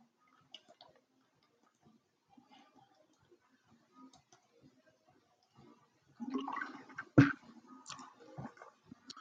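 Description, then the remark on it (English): A few faint ticks and taps, then running, splashing water for several seconds as a person gets some water, with a sharp knock partway through and a gurgling trail-off. No one speaks. “Yeah, but I need some water.”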